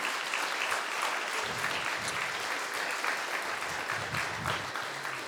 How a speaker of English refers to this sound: So I want to thank you, Faith United Methodist Church Homestead. Could we give a round of applause to Faith United Methodist?